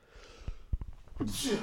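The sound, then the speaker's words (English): A single sneeze bursts out near the end, sharp and hissy, preceded by a few soft thumps and a quick intake of breath. It sounds fairly loud. “Bless you.”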